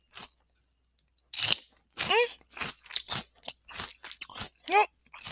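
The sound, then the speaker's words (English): A crisp bite crunches into a small, baby-sized piece of food, followed by a run of wet, crackly chewing bursts with brief voiced murmurs mixed in between the chews. “Watch, this one's not going to be that crunchy because this is a baby one.”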